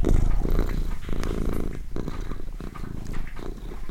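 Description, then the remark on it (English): A cat purrs steadily, a deep, low, continuous throbbing rumble that pulses rhythmically for several seconds with no voices. “The main thing I really remember was this deep, low, throbbing sound.”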